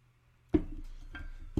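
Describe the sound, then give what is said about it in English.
Someone sips water: a few soft swallowing gulps and small clicks, spaced about half a second apart, with no talking. “I'll let you think about that for a second while I sip some water, if that's okay with you.”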